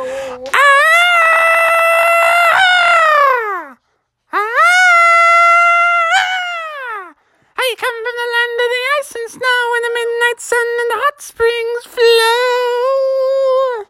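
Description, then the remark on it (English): Viking-style singing off in the distance from Vikings on an approaching ship: a lone voice holds two long, sliding, howl-like notes, then breaks into choppier, rhythmic chanting phrases, loud and wordless with no other sounds. “And they were starting to get a bit nervous because they could hear the Vikings singing off in the distance.”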